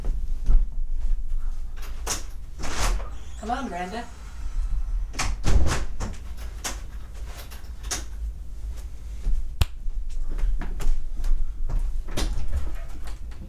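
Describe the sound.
A door is handled and opened to let someone in: sharp clicks, clunks and rattling knocks scattered over several seconds, with a brief spoken voice and some room noise between the bumps.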